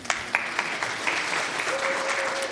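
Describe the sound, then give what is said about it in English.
A crowd at a church service applauds steadily after new deacons and elders are ordained, dense clapping at a moderate level with a few sharper claps early on and a faint sustained tone sounding near the end. “Everybody, a round of applause.”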